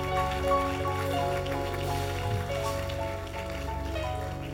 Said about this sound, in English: Oh, those who are clapping.